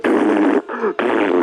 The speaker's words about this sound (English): Gave you me fart.